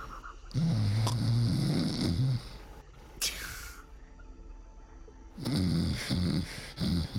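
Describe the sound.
A woman gives a single sharp, breathy huff of air through the nose, cutting in briefly between stretches of low, rumbling, snore-like vocal sounds.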